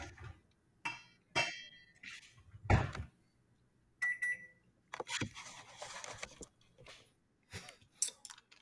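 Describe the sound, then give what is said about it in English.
Handling sounds: clunks and clicks from a microwave oven as someone turns on its light before heating up dinner, with one short electronic button beep midway. Quiet gaps separate the bursts, and no one speaks. “And by programming, I was turning on my microwave light as I'm about to heat up my dinner, which I did not get a chance to eat earlier.”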